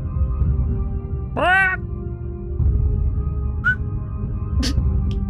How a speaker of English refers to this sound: Fuck, I can't whistle. Never had been able to whistle well. You just put your lips together and blow.